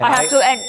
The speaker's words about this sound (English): The bell just rang, guys. We had a lot more to say.